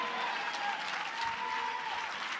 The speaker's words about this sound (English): Now clap your hands and rejoice unto the Lord. For the Lord is good, and his mercy endures forever.